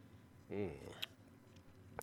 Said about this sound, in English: You've heard of a hot toddy? Well, we've got the hot alpha, and that's what my libation of choice will be today. In fact, let me take a sip right now.